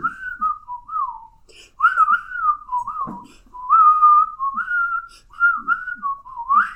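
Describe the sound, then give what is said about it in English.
A person whistles a wavering, breathy melody of sliding notes in phrases, imitating a pan flute solo given as a jazz solo, with soft low thumps and breaths between phrases. “Do it not whistling. Because a pan flute, it's not a whistle, it's like it's like when you blow into like a bottle.”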